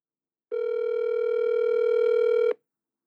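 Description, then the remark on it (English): A single steady telephone tone holds for about two seconds at an even, fairly loud level as a phone call is placed, then cuts off abruptly. No one speaks. “I got to find his number.”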